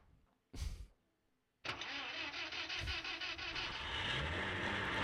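A car engine cranks in a short burst, then fires up and revs loudly close by, settling into a sustained, rough roar with no voices.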